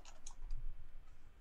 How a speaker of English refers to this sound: And you start hearing the sound of a quill on paper coming from your side bag.